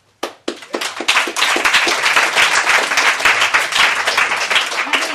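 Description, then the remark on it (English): An audience applauds a guest speaker, many hands clapping in a dense, steady wash after a couple of sharp opening claps, holding loud and even for several seconds. “so it's very nice of you to clap, but so first of all, thank you so much for having me.”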